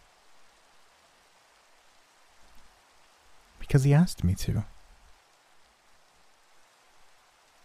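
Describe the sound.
Soft, steady rainfall hisses throughout as a low, even wash of noise, with a man's voice speaking briefly over it near the middle.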